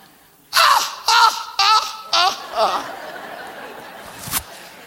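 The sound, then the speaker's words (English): A laughing gull gives a loud series of five harsh, descending calls in quick succession, like a cackling laugh, fading slightly toward the end before a brief sharp click. “That's why it's a laughing seagull, laughing at the brown pelican.”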